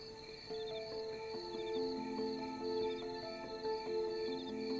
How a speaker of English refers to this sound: Crickets.